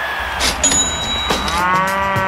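A cow moos loudly in one long, drawn-out bellow that wavers in pitch, with no talking over it.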